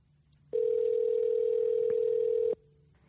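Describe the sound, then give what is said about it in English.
A phone call to a cell phone ringing through the line, unanswered: one steady electronic ring tone holds for about two seconds, loud and even, then stops, with no voices around it. “Pick up the phone.”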